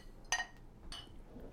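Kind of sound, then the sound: household object, clinking drinks together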